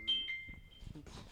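A phone rings briefly with a thin, high electronic tone, two short steady notes, followed by a soft burst of rustling noise. No one speaks.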